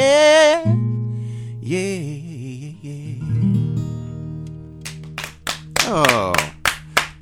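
Sharp hand claps in the studio, about eight or nine in a loose, uneven rhythm, ring out after a passage of wavering singing over sustained low musical notes that keep humming beneath the claps.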